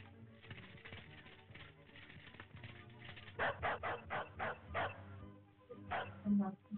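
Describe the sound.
A dog barks in a quick run of about six loud barks, pauses, then lets out a couple more, over a steady background of murmuring voices and noise.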